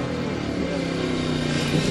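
Cars driving past, a continuous low engine drone with a steady rumble and faint rising hum, holding an even loudness throughout without any voices.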